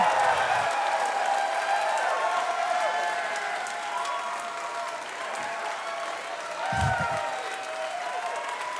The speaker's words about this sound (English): I got, put your fucking hands together for Nick, my dick slurps up corn niblets like a snake, Wiger!